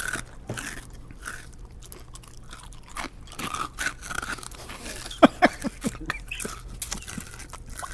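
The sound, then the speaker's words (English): Crunching of honey nut cereal from a plastic bag being chewed, a steady run of crisp, gritty bites with a few sharper, louder crunches near the end, no talking. “But I could taste the honey nut. It's like the plastic bag kind of bled through. Yeah. Onto the cereal.”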